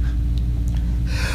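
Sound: sneeze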